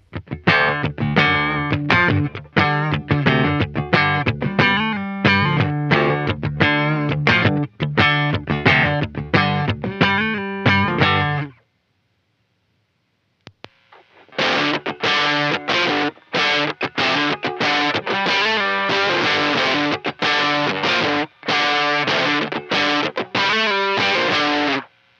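Electric guitar played through a Puritan overdrive distortion pedal plays loud, chugging rhythmic chords with a thick, fuzzy distorted tone, pauses for about two seconds of silence, then resumes with another dense, gritty riff. No voices.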